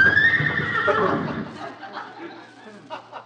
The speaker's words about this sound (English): Oh, that's that Great Dane that belongs to the people next door. Great Dane? Sounded like a horse to me. I know. They've been feeding him so much horse meat he whinnies at the moon.